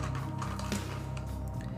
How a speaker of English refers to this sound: All right, all the dice. Roll so many dice.